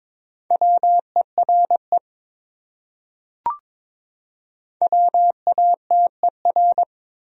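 Morse code of common English words sent at about 22 words per minute: a steady mid-pitched beep keyed into quick dots and dashes, in two bursts separated by a silent pause with a brief click between them.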